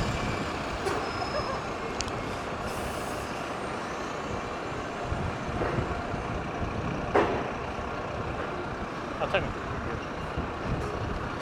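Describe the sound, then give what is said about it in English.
Buses and trucks rumble past in heavy street traffic, a dense continuous engine roar broken by a few sharp hisses of air brakes, with faint voices somewhere in the background. “Look at all the buses go past.”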